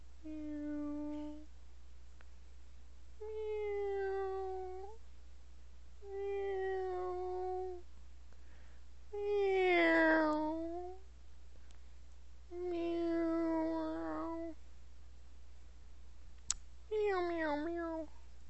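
Cats meow in a series of about six drawn-out, tonal calls, spaced evenly with short pauses between them, fairly loud, with no talking over them.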